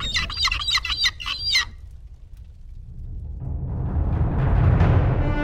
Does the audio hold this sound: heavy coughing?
no